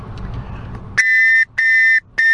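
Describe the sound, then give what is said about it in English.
Three sharp, loud blasts on a shrill whistle, each about half a second long with short gaps between, the last cut off; a brief rustle of low noise comes first. “I bought a whistle this weekend.”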